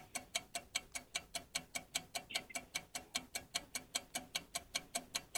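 A steady, fast ticking clock sound effect, about four crisp ticks per second in an even countdown rhythm, playing alone without any talking, used as the countdown timer in a radio call-in word game where a caller must name six words before time runs out.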